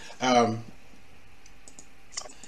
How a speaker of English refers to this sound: All right, let's get started. Because, like I said, I got a lot of clicking to do over here.